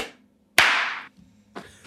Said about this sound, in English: Do you have your garage band going? Yep, I'm recording right now. Okay, let's clap. Let's go. 3, 2, 1.